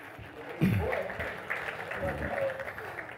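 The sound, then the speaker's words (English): A crowd claps in a steady, dense patter of overlapping hands during a baby dedication, with voices murmuring and speaking over the applause throughout. “Yeah, that's a good time to clap, yeah.”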